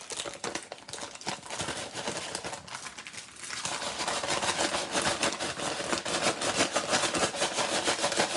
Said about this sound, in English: Remove plastic over wrap, unfold and shake bag 5 to 6 times to spread pork rinds.